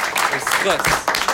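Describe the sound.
A group breaks into applause, a dense wash of clapping mixed with overlapping voices and cheering, steady and fairly loud throughout the short burst.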